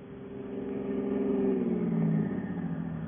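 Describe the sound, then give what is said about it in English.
A car engine with something wrong with it revs steadily, its pitch rising and wavering, then sagging unevenly as if struggling, fairly loud with no voices over it. “Something wrong with the car. Why don't you get out and look at the motor?”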